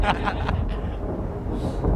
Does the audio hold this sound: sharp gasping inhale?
no